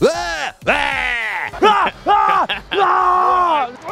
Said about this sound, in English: And then I get up, come out, and I'm like, let's go! And then as I yell, I get myself more hyped.